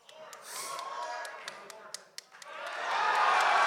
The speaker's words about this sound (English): Wow. Wow. Biggest applause of the night.